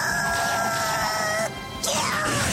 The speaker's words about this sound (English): sending Meowth straight to the lava-filled core of the Earth while screeching like this